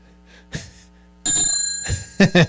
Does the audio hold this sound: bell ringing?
yes